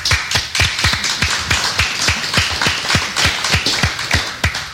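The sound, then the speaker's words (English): A steady, even run of about sixteen sharp hand claps, one roughly every third of a second, loud and crisp with no voices over them. “Yes, I wanted to clap, and let's do.”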